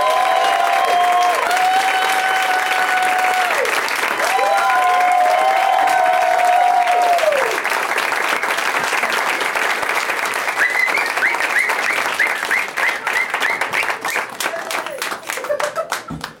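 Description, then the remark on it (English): Loud, sustained audience applause welcoming guests Tess Morris, Greg Fitzsimmons and Graham Elwood, with cheering and several high, sliding whistles rising over the clapping, which thins into scattered claps toward the end. “I like it when you get the whistling out of the way early.”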